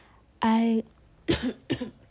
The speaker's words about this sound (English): excuse that cough.